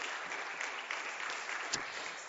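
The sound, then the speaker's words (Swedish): An audience claps for two people who volunteered to stand on stage, a steady, dense, even wash of many hands with no voices, holding a constant moderate loudness from start to finish. “Så jag tycker vi ger dem en applåd att de vågade.”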